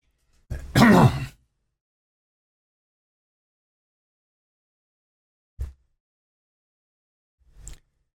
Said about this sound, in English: Let me clear my throat a minute.